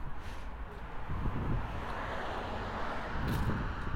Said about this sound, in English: You're gonna have to forgive me this episode. I picked a bad spot to start. There's gonna be cars.